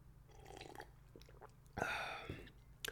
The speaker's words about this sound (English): Quick sip of water. Don't mind me, boss.